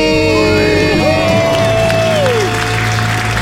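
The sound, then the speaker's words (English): A loud crowd cheers and applauds continuously after a couple's debt-free scream, with a sustained whooping shout rising above the dense roar of clapping and hollering throughout. “And the crowd goes wild.”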